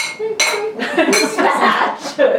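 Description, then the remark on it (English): Several glasses clink together in a toast to Margot Kidder, bright ringing taps overlapping in quick succession, with people's voices murmuring underneath. “Some clinking in there.”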